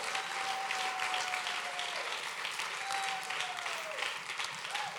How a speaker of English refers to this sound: If you believe that, put those two Alaskan hands together and give God a great hand clap.